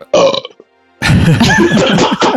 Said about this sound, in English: Uncomfortable right silence there. Right there. Yeah, I had to throw in a belch. So sorry.